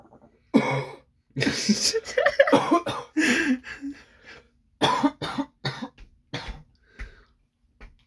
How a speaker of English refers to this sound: Coughed it out. It's the fucking worst thing to do. Literally. Don't ever cough out your smoke.